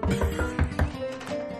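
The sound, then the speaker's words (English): Four dull, thudding knocks on a door in a quick, uneven rhythm, low and moderately loud, heard over a steady tonal hum in the background. No one speaks. “No, knock on the door.”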